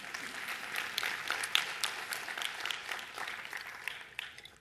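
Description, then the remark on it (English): A crowd claps for God steadily, with dense, overlapping hand claps forming a continuous bright patter that holds at moderate loudness, then tapers off slightly toward the end. “We can clap for God.”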